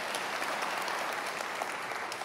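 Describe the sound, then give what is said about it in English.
An audience claps during a sermon on Paul's words about love, in a dense, steady burst of applause, many hands overlapping into a continuous crackle that stays even for a couple of seconds, with no voices standing out. “And this, y'all can clap for that. I heard it.”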